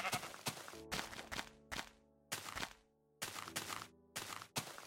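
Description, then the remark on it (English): Repeated short bleats from brown sheep come in quick succession, loud, mixed with dull thumping knocks. Nobody speaks. “Brown sheep!”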